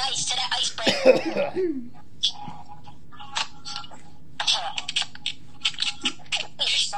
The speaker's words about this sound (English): DJ coughing fit.